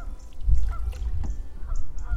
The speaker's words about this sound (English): And those stupid geese who keep flying downstream and then shocked when we come around the corner.